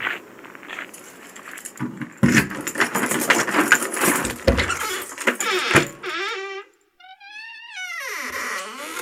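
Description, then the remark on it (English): Keys jangle and clink close up for several seconds, a busy metallic rattle, followed by a short rising and falling whistled jingle with no talking. “Get your keys out and go into the Village Hall of Fame.”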